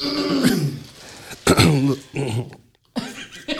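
A few rough, voiced coughs and throaty clearing sounds come in short bursts, with brief gaps between them and a quiet pause near the end.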